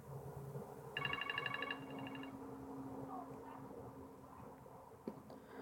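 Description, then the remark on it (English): A drawing timer alarm goes off in a quick burst of rapid, high electronic beeps lasting about a second, marking the end of a full 15 minutes of drawing. It then stops, leaving a low background hum and faint speech. “There's our timer.”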